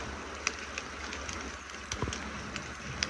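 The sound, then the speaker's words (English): A campfire crackles outdoors on a mountainside, a steady soft hiss broken by a few sharp pops and snaps at irregular intervals. Moderately quiet, with no voices. “We are now sitting by our mountainside campfire”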